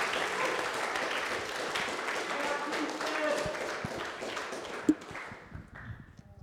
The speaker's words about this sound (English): Okay, so then let's hear a round of applause for that answer. Yeah. Come on. Let's go.